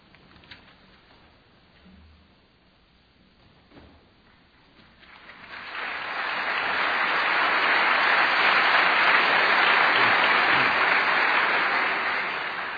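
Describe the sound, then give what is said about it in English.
A few seconds of quiet murmur give way to a crowd's applause as Dr. Price is introduced to speak for 20 minutes, swelling in and holding steady as dense, even clapping through to the end. “After what you just heard about me, you don't really want to clap, admit it.”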